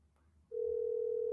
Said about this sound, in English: Can you hear that? You're calling it. I hear it ringing. Okay.